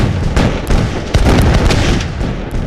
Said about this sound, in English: What are you waiting for? Fire! 20 guns fire all at once.